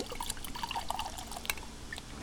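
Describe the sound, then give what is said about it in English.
Buckhorn Bourbon from Kentucky glugs and splashes as it is poured into a glass, a steady gurgling stream with bright little bubbling pops, with no talking. “Buckhorn today because, first let me get this poured.”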